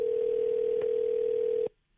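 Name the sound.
telephone call ringing out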